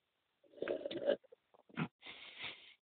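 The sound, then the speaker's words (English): A loud, wet slurp of a vodka Mio drink lasting under a second, then a few small gulping clicks, a sharp gasp, and a raspy, sputtering choke with no talking. “Sorry, I cracked myself up with a loud slurp and choked.”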